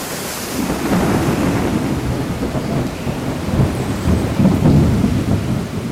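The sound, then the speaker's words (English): Hurricane Maria in September 2017: roaring winds gusting above 120 miles per hour with heavy rain, severing palm tree tops and ripping boarding off buildings, a dense, continuous low rumble that surges and swells in gusts, with hissing rainfall layered over the top and no voices. “The winds are ferocious right now, gusting above 120 miles per hour, severing the tops of the palm trees and ripping off the boarding that's on buildings.”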